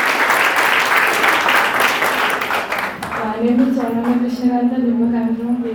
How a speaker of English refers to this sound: Yeah, come, go ahead. Yeah, give her a cheer, buddy.